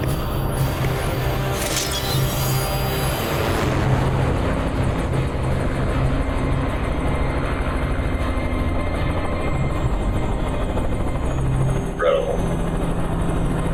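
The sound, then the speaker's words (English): A helicopter drones loudly and steadily throughout, its dense rotor and engine roar filling the whole stretch with no pauses and no voices. “It's the cool old chopper hopper.”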